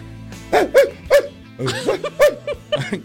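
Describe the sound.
A person imitates a dog, giving about seven or eight short, yappy barks and yips mixed with breathy panting. The sounds are fairly loud, in uneven bursts, with no talking.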